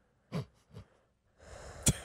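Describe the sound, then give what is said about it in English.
Heavy, breathy puffs hit the microphone as a person catches their breath: two short exhalations, then a longer rasping breath that ends in a sharp pop. Moderately loud, with no talking. “Breathing heavy into the microphone.”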